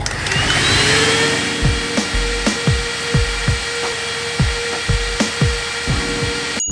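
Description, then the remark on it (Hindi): A car vacuum cleaner motor whines steadily at a high pitch, loud, with repeated knocking clicks at an irregular rhythm throughout, during a suction power test with the cleaner connected to an airflow checking device attached to a box. No one speaks. “तो हमने कनेक्ट कर दिया इस डिवाइस को इस बॉक्स के साथ, और यहाँ पे हम कनेक्ट करने वाले हैं वैक्यूम क्लीनर्स को। तो चलिए फिर इस टेस्ट को हम स्टार्ट करते हैं।”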